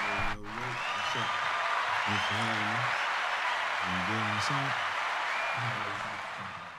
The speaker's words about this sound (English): So real quick, one to two, y'all give a round of applause. Which one of these things is a round of applause? Hit it. Round of applause.